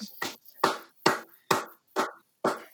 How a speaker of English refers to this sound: I've never clapped for a guest before this early on in the podcast.